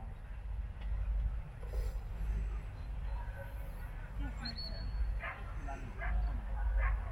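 A single short, shrill stop whistle blast, blown during dog training to make a dog stay still while another dog retrieves, cuts through midway over a steady low rumble of outdoor noise with a few brief dog yips and barks.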